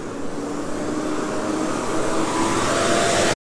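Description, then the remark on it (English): A garbage truck's engine rumbles steadily as it drives past on garbage day in a suburb, a broad, loud mechanical roar with a faint whine over it, holding fairly even for a few seconds before cutting off abruptly. “Sorry, this is garbage day, so this truck just around.”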